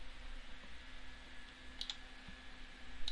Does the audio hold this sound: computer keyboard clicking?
yes